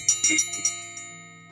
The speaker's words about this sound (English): Before we do that, I'm going to go ahead and set our space. So first, I like to ring our bell to get us into the present moment.